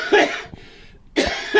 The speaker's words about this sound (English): Basically, I've had this cough for like 3 weeks now, and when I first got it, I had this full-on virus, like whole body aching, felt dreadful. That's all gone, but this cough just won't go.